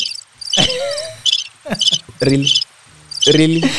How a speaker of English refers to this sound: Na cricket hapo.